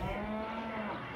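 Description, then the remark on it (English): A single cow on a farm in Beit Sahour lets out a long, steady moo that holds one low droning pitch for about a second, fairly loud, with no voices around it. “Every day, we're receiving many people from the town coming to see the cows.”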